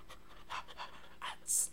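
Dallas the dog pants right up against the microphone, a quick run of breathy, airy huffs in a loose rhythm, ending on a sharper, louder hiss of breath.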